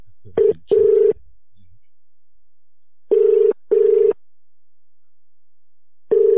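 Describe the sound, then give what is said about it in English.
Telephone ringback as a call is transferred to a store's fragrance department: a short burst of dialing, then a steady mid-pitched tone ringing in double pulses, pausing, and starting another ring. No one talks over it. “Transferring you now.”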